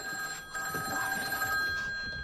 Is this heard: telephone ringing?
yes